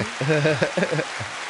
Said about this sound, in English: They continue to applaud.